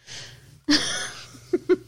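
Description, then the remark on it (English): A new dog, asleep, snores loudly, a breathy wheezing inhale followed by a sharp rattling snort, then a quick series of short nasal snuffles. “If you guys hear any weirdness, it's our brand new dog who's in here sleeping and snoring very loudly.”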